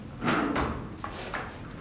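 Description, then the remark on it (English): Chairs scrape and bump against the floor as people stand up and push them back behind them, several short overlapping scrapes and thuds in quick succession, moderately loud with a faint murmur of voices. “So releasing your hands, start to take and move your body up to a standing position, and we'll just push the chairs back behind us.”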